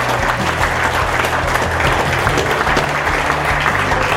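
An audience at a live evening event applauds the bar staff, steadily throughout, a dense, continuous wash of many hands clapping at an even loudness, with a faint low hum underneath and no voices standing out.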